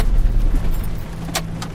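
A car engine rumbles low and steady as the vehicle slows, then a sharp metallic click and a second latch sound follow, like a car door being opened, with no one talking.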